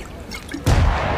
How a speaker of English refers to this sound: What was that? It's a gunshot.